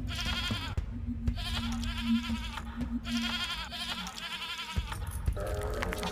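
animal, goat bleating

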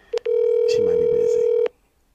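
signal or alarm, telephone dialing tones

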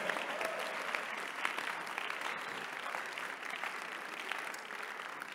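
crowd, audience clapping

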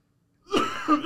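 human body sound, cough

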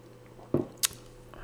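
food or drink, sipping a drink

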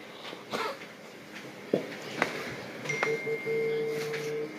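signal or alarm, phone vibrating

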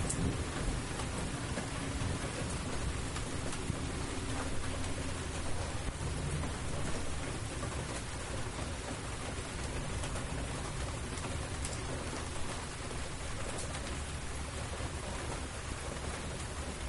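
nature, heavy rain falling

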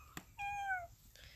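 animal, cat meowing

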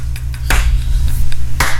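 human body sound, slow golf clap

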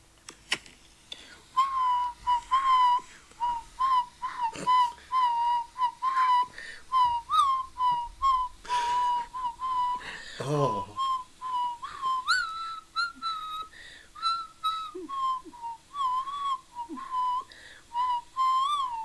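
human body sound, person whistling a tune

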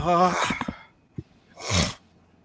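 human body sound, sneeze

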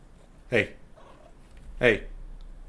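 animal, cat purring

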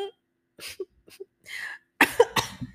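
human body sound, cough

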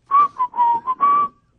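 human body sound, person whistling a tune

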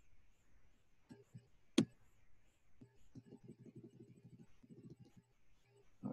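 household object, typing on a keyboard

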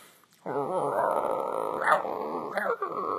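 animal, dog growling

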